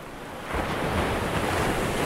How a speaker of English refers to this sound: Do you hear that? That's the ocean.